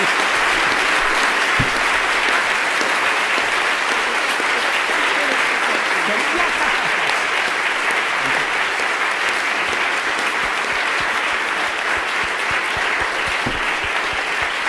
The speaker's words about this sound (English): Don't applaud so much, spare your energy. When we communists will take power, you will have to applaud, you know? Spare the energy for people's democracy, you know, when you will have to.